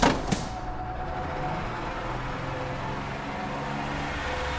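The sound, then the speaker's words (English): A city bus's engine rumbles steadily with a dense wash of road noise as the bus drives away, after a couple of brief knocks at the start, fairly loud throughout. “As the bus sped away, I shut my eyes, leaning my head back, breathing deep, trying to prepare myself for the day ahead.”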